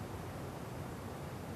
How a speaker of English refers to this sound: Perhaps listening to the rain as if for the first time ever.